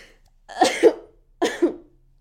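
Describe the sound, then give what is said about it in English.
Two loud sneezes about a second apart, each a harsh, breathy two-part burst, with silence between and no talking. “Gotta sneeze.”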